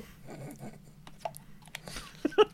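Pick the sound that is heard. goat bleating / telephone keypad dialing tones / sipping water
sipping water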